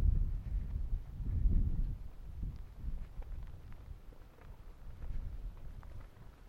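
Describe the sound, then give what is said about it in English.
Wind buffets the microphone in a steady low rumble on a windy day in Vancouver, Canada, gusting louder early on and then settling into a softer continuous roar, with no voices present. “Oh, it's a windy day here in Vancouver.”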